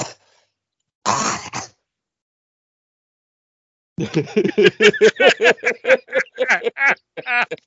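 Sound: coughing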